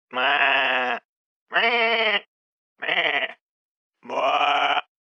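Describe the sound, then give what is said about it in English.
A person on a phone call imitates a sheep as a sound effect, giving four loud, drawn-out wavering baas, each about a second long and separated by short silent pauses. “Are you ready with your sheep sound effects?”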